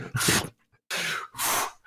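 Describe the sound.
A voice imitates snoring with three loud, breathy, rasping bursts: a short one, a pause, then two more in close succession, each a rough rush of air.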